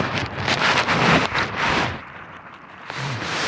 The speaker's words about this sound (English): Riding in the car.